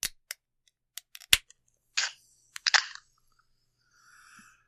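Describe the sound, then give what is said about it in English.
An energy drink can cracks open: a few sharp clicks and a pop, then short bursts of hissing spray across a table, ending in a faint, lingering fizz. “I'm surprised you guys don't get showered by a freaking energy drink.”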